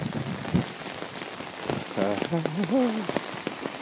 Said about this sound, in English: Yeah, and you can hear it. This storm drain here. That's a little bit of the gush, gush, gush.